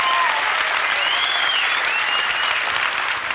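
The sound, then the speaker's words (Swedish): Steady, dense audience applause for Henrik Dorsin fills the whole stretch, a continuous hiss of many hands clapping at an even, loud level without pauses. “Henrik Dorsin, tack, fortsätt applådera.”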